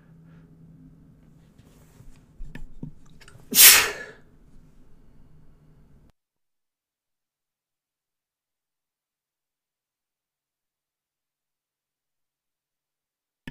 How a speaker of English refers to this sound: Excuse me on that one. A sneeze just came out of nowhere. I thought I hit the mute button, but obviously I didn't. I saw the blue lines, you know, expand for picking up the sound. So I do apologize.